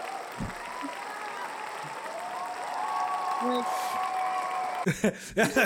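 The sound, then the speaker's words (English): A large audience applauds steadily, a dense, continuous wash of clapping that holds its level for several seconds before a voice starts speaking over the tail end. “The actual applause lasts for like 36 seconds.”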